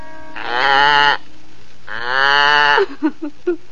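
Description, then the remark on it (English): A goat bleats twice in long, wavering cries, then lets out three or four short, clipped bleats in quick succession, fairly loud with no one speaking. “have sent her out, hungry and alone, to tend their little goat as it grazes on the soft green grass.”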